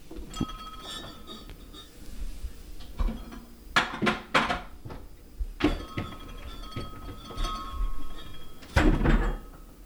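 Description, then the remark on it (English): A fridge door opens with a soft seal sound, then glass bottles clink and rattle several times as a beer is pulled out, ending in a louder bump and rustle. “So that means it's time to reach into the Fridge of Mystery and pull out the second beer of the evening.”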